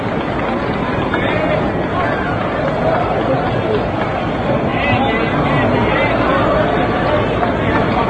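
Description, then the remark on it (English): Stadium crowd at a baseball game applauding as batter Roger Craig comes up to bat, mixed with a steady roar of crowd chatter, loud and continuous throughout without any clear break or single voice standing out. “Roger Craig drawing his round of applause.”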